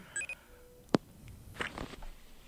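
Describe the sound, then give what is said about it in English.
A FaceTime audio call tone: a quick pair of short, bright electronic beeps at the start, then a sharp click and faint background rustling. No one speaks. “That's the FaceTime audio beep.”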